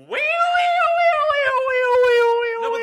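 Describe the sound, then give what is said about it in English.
A person vocally imitates the Doppler effect of a passing siren with one sustained, loud, wailing vocal tone, held for about three seconds as its pitch gradually slides downward. “Do the Doppler effect. Don't you reference the Doppler effect unless you do the actual Doppler effect.”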